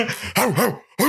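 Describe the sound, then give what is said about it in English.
A person barks like a dog, imitating Arsenio Hall, loud: a quick run of throaty woofs with swooping pitch, a brief pause, then one more bark. “He's doing the Arsenio Hall thing.”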